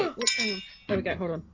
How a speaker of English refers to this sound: it's time at the bar. Crab Bell! Oh, just one this week. Crab Bell's broken.